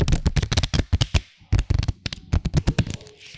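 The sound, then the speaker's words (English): A deck of cards being shuffled, a fast burst of crisp flapping clicks that riffles on and off in quick rounds for a few seconds, with no one talking. “I think they're shuffled good.”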